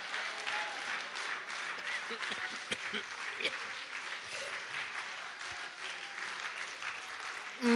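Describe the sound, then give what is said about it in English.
A crowd applauds steadily for several seconds, dense clapping with scattered cheers and shouts mixed in, loud and continuous throughout. “If I'm talking to anybody here, you ought to be on your feet clapping and rejoicing, because you have heard God, His word, and His will.”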